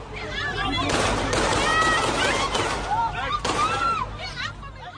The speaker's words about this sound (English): God, it was terrifying to watch that, wasn't it? You know, to hear all those gunshots, to hear the tat-tat-tat, the sequence of shots, to hear the screams of people running.